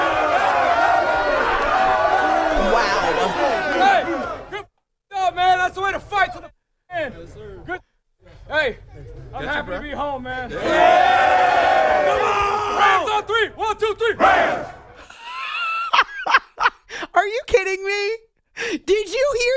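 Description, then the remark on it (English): A team cheers and hollers in a locker room as coach Sean McVay calls Baker Mayfield to the middle of the room, many voices shouting together in loud, excited bursts broken by a few brief silent gaps. “Sean McVay starts out, but listen to the cheers when he calls Baker to the middle of the locker room.”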